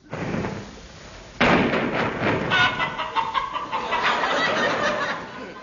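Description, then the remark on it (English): A flock of chickens clucks and squawks busily, a dense, overlapping chatter of hens that grows louder and livelier after a brief, quieter opening, with no one speaking. “The sound of chickens has specially been added for people living in rural districts.”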